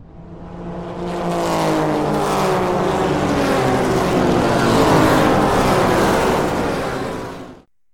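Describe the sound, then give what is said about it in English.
Loud race car engines roar and rev upward together, a dense, sustained howl that builds for several seconds before cutting off abruptly, with no voices. “We've actually got to get the car prepped because we are about to take the green.”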